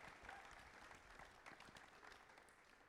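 An audience claps steadily, a dense wash of many hands with scattered sharper claps standing out, holding at an even, fairly loud level throughout without any voices rising above it.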